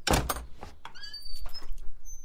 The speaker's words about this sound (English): The doors swing open to, you guessed it, opulence! Ooh, baby, this is a beautiful home.